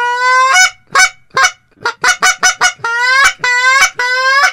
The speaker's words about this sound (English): How about a Canada goose?